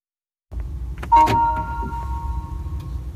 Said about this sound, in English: So this episode's going to be a little different as I'm in the car, driving around.